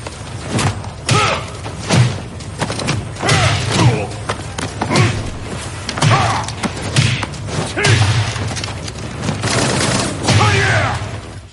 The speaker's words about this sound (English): Had to make sure to include that one because of the gunfire. Sounded like my childhood.